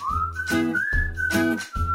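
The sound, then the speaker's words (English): A whistled language: a steady, clear whistle holds a long tone for two seconds, gliding slightly upward in pitch, over louder rhythmic bursts of lower, buzzy sound that pulse in and out beneath it; high and low whistles carry different meanings. “口哨有高低不同音阶，可以传达不同的含义。”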